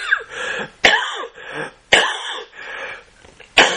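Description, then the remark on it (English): A man coughs three times in quick succession, with sharp, loud bursts about a second apart, each trailing into rough throat clearing and raspy breaths. “Sorry, I have to get a cough button on the recordings here.”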